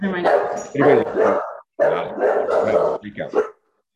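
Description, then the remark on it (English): A dog barks repeatedly in loud bursts, several yaps and bow-wows running together over a few seconds before stopping. “Oh, one of your dogs is barking.”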